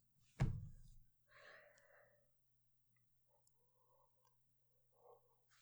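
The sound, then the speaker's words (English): A big yawn opens with a sharp intake of breath, then stretches into a voiced, drawn-out exhale. Faint soft vocal sounds trail off afterward in otherwise quiet surroundings. “Okay, that was a big yawn.”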